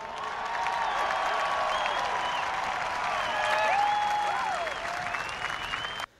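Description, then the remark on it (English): Sustained crowd applause in response to a speech, a steady wash of clapping with a few high whistles and faint cheers mixed in, holding even for about six seconds before cutting off abruptly. “A lot of white in that crowd, I'll tell you. Mm-hmm. Okay. Tepid response there.”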